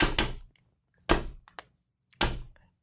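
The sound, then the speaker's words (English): A credit card slapped down hard on a side table three times, sharp, the first hit a quick double tap, with a faint click between the later slams. “he's is slamming banging his credit card on the.”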